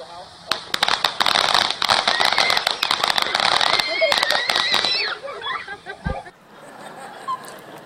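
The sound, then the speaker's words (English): Fireworks crackle and pop in rapid, dense bursts for several seconds on the 4th of July in Michigan while children and their cousins celebrating shout and laugh over them, then one deep thump near the end gives way to quieter background. “actually want to show you this video that I just happened to catch over the 4th of July as I was in Michigan with my kids, and they're celebrating fireworks with their cousins, and just has a little bit of a surprise ending I thought you might enjoy.”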